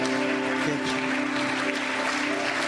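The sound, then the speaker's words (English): An audience at the Loyalty and Church Growth Conference claps after the announcement that Papa Maposi will be its life patron, a dense, steady wash of applause that holds evenly for a few seconds, with a sustained low tonal hum underneath and no voices. “Vocês estão a bater palmas, mas não entenderam.”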